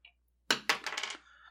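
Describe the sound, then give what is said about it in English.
A small six-sided galaxy die, rolled to choose a character's subclass in a tabletop role-playing game, clatters onto a hard tabletop with a sharp initial strike, then bounces and rattles in a quick run of clicks before settling, fairly loud. “No, I'll roll the subclass. Okay. That is a 1d6, and the sub rolls are always galaxy dice.”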